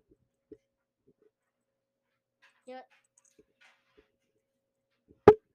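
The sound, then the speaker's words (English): A dog hiccups, making a few short, abrupt sounds spaced seconds apart in near silence, with a sharper, louder jolt at the end. “And he's having the hiccups right now.”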